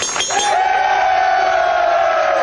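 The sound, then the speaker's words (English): A boxing bell rings out with a sustained metallic tone that slowly fades, while the Sixers' sales force of millennial salespeople cheers and shouts loudly throughout as one of them completes a big sale. “Whenever that boxing bell rings, a Sixers salesperson gets their wings.”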